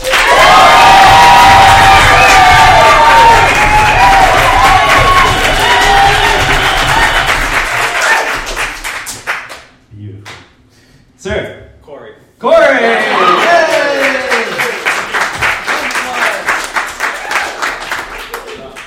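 A live audience cheers and applauds to vote for the winner of a debate, many overlapping shouts and claps that fade to near silence with a few scattered claps, then erupt again into another burst of cheering and applause.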